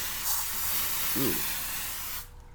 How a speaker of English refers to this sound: In my hand, I'm holding a can of Glade air freshener. Let me spray it.